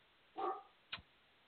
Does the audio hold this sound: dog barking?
yes